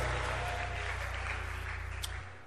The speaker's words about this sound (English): Give the Lord a mighty clap and a shout of hooray. Hallelujah.